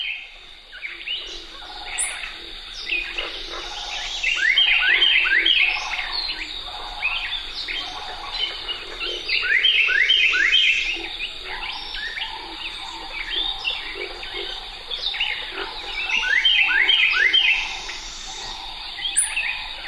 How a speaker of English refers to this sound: A solo by Carolina Wren dominates this recording